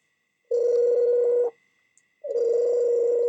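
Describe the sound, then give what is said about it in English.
Telephone dialing tones: two long, steady, buzzy mid-pitched tones, each about a second, separated by a brief pause, with no voices, as someone calls the police department. “I better call the police.”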